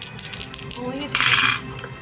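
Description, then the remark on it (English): Dice being rolled clatter and rattle, a quick series of light clicks building to a denser burst of tumbling before settling on a total of 11, with a faint voice murmuring underneath. “Roll. I'll roll your dice.”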